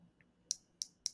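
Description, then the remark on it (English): A small spring-loaded clip on a second-generation iPod Shuffle music player clicks open and shut, three crisp snaps in quick, uneven succession, preceded by a faint tick, with no talking. “I got an iPod Shuffle second generation. It's the first one with the little clip.”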